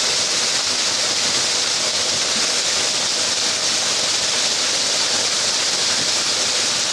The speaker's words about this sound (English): He's scared of the water, which is understandable. He has never been this close to waterfalls before.